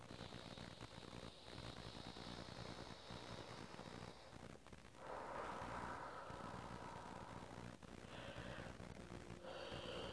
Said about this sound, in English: Deep breath and big yawn.